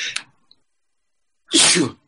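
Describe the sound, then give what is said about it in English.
A single loud sneeze bursts out after a brief quiet, preceded by a short sharp intake of breath or sniff at the start. “Gesundheit.”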